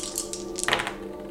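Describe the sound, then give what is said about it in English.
Three dice rattle and tumble across a tabletop during a tabletop game in a short burst of light, quick clicks, fairly quiet, over a steady low hum with no voices. “Come on, dice.”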